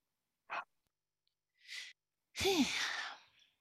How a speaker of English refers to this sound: I've been yawning through the whole process. I'm still yawning. So it's like, I was hoping like you would continue talking while I was yawning.